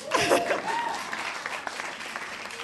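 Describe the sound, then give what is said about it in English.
An audience breaks into applause, with a brief high whoop over the opening burst, then dense, steady clapping that eases slightly but keeps going to the end. “Another clap for that, please.”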